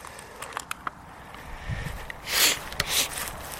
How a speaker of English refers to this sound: You can hear this noise of me stomping around and changing things over.